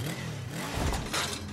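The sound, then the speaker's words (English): A motorcycle engine rumbles and revs up briefly as it rolls, a throaty, steady drone with a couple of louder surges and no voices. “When you love riding a motorcycle, you want to ride it everywhere, even to a physical.”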